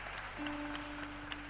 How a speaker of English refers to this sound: Clap for the girl. She's gonna sing it.